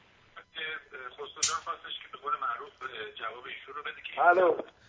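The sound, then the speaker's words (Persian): A narrow, tinny phone line carries continuous talking from caller 604 on a call-in show, with the caller's own radio broadcast playing in the background and blending into the voices at a steady, moderate level. “آقای 604 شما رادیوتون رو خاموش کن بعدم با ما صحبت کن.”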